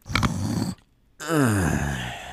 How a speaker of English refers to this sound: That was okay. It sounded like a snore, and then maybe that's a wet dream or something. I don't know. That was a snort.